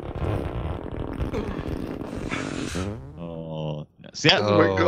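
A drawn-out, rubbery fart sound effect like skin squeaking against a leather couch, sputtering and buzzing for several seconds before ending in a louder, raspy burst.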